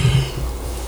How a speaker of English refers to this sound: Yeah, nigga, I yawned.